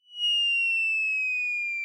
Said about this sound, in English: I think in our sound effects library, it's called bomb drop, but it's the same thing. I mean, that's another piece of the language that everybody knows.